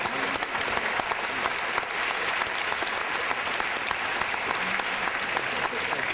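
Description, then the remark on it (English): An audience applauds a speaker, clapping steadily for several seconds, a dense, even patter of many hands with no break in the sound. “do we applaud to you also? I think you deserve it.”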